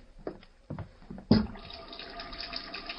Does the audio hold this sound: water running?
yes